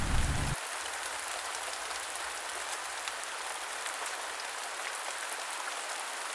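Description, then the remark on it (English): Heavy rain pours steadily onto a corrugated iron roof over a backyard, a dense, continuous patter of countless drops with a constant hiss and no pauses from start to finish. “Again, Alex leant on his window pane and stared at the pouring rain beating the corrugated iron over the backyard, enlarging the puddles that would later glisten and reflect the grey sky.”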